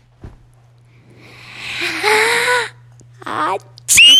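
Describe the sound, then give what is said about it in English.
A voice performs a drawn-out, rising wail, then a shorter cry, and ends on a sudden, sharp, high-pitched shriek, all loud, like an imitated blood-curdling scream. “That was a high-pitched, blood-curdling scream.”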